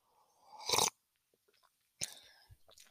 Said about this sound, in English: Literally sips tea. Don't you love it? I literally sip my tea.